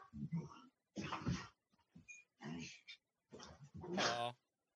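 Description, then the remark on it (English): Dogs fight playfully, with a run of short growling and snarling bursts separated by brief pauses, ending in a louder, higher-pitched yelp-like growl. “Look at the dogs fighting.”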